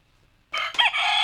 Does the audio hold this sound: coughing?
no